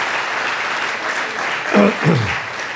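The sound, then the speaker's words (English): A crowd claps steadily in a dense, sustained wash of applause given as a clap offering during a sermon, with a single voice briefly calling out over it near the end. “Now give them a clap offering.”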